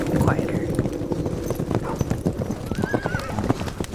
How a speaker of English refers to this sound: And the wind is getting louder. And you shouldn't be able to hear it, but you're starting to hear hoofbeats.